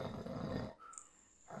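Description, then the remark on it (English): A person imitates a growly snore: one rough, rumbling, low-pitched burst lasting under a second, then a quieter gap with a faint thin whistling tone before another growl starts. “Yeah, no, one time, because he snores sometimes, and then he'll get into, like, that growly snore.”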